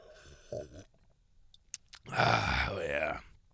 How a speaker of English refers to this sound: Gonna have another sip here of Pedialyte for the boys.